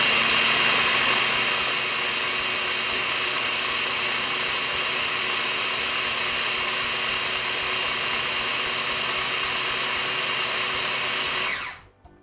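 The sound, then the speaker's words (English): A food processor whirs steadily at high speed for about twelve seconds, a loud, even motor drone giving a thick azuki bean dip with red bell pepper one last spin, then winds down abruptly at the end. No one speaks. “I'm gonna give it one last little spin.”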